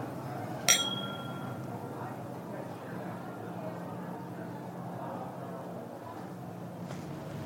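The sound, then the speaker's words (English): A single bright clink of glasses touching in a toast, ringing briefly before fading, set against a steady low background murmur. “Well, cheers to that. Thank you, cheers.”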